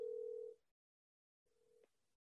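Ringback tone of an outgoing phone call: a steady, mid-pitched electronic purr, then a pause, then a second shorter and softer burst. No one speaks.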